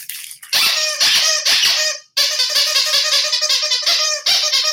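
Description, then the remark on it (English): A squeaky dog toy, Brandy's new sunshine doll, squeezed rapidly and repeatedly, its loud, shrill squeals coming in quick bursts with one brief pause midway, and no voices. “That's Brandy's new sunshine doll. Playful thing. Squeak it.”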